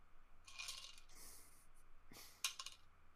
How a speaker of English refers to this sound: I would like you to roll me another single dice, please.